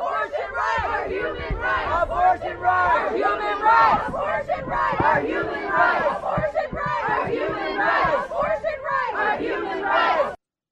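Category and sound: crowd, protest crowd shouting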